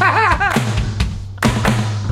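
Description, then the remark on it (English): Several heavy, loud thuds of several people's hands banging simultaneously on a table, falling at irregular intervals with a brief wavering vocal sound near the start and a low steady hum underneath. “I hate you guys simultaneously bang the table.”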